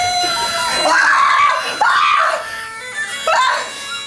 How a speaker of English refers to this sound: Here, listen to the monkeys! The monkeys! The monkeys!